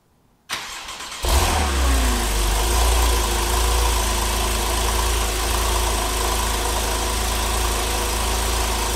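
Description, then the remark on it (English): A Porsche 911 engine with its stock exhaust cranks and fires up with a sudden loud roar, then settles into a steady, deep, rumbling idle from the exhaust, with no talking. “Let's check out the stock 911 exhaust first, just the engine startup.”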